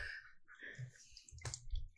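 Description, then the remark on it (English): Orange juice splashes and gurgles into a glass of Corona beer, with wet dripping sounds and one sharp splashy burst near the end, quiet. “We got another splash.”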